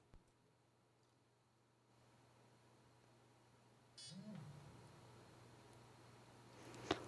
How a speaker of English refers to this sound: Sorry about that. You heard a little beep. That was a machine starting up.